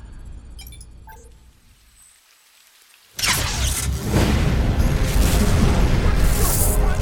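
After a low rumble and a brief hush, cannon fire erupts in a sudden loud blast, then continues as a dense, roaring barrage of booms and crackling debris.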